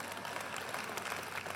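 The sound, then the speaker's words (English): A church audience claps steadily, a dense, even patter of many hands with no voices over it, moderately soft throughout, after the pastor tells of being received as their new senior pastor. “From there, we decided, hey, we have to, that's not for an applause.”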